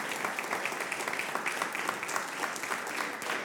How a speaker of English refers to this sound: Can you think of something good in your life right now? Can you just give the Lord a clap for that and say, God, I'm grateful.